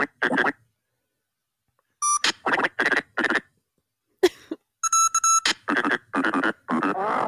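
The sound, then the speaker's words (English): A video game frog character babbles in garbled, chirpy syllables, delivered in quick bursts with short pauses and mixed with bright electronic beeping tones, fairly loud. “Here's the frog.”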